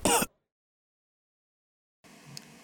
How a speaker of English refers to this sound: Oh, I can feel it coming. It's coming. I'm gonna cough into my napkin.